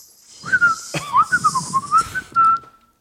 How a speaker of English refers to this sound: Let's all try to whistle for the next 10 minutes.